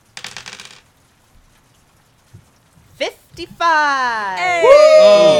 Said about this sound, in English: So roll me a D100, and if it's a 40 or lower, then the cookies are fucked.